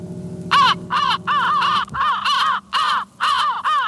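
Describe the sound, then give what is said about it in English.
Crows caw loudly and harshly on the looping groove track at the end of an album, seven or so calls repeating at an even, mechanical pace like a looping record groove, over a faint low hum. “The Crows, because they're the groove track, the eternal groove.”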